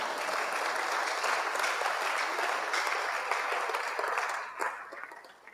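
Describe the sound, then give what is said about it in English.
An audience claps steadily for about four seconds, a dense wash of many hands at a fairly loud level, then the applause thins out and fades with a few scattered claps at the end. “Clap for”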